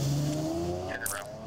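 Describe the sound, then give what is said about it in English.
A woman starts a car and drives off fast: the engine runs loudly, its pitch shifting as it revs and pulls away, with a short high squeal of tires near the end. “All right, so for those that's listening, she still starts the car.”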